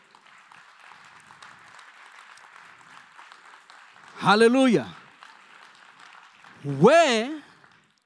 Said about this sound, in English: Can we clap hands for the Lord for that?